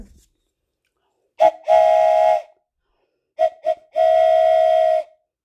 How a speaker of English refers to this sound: Hear a train whistle.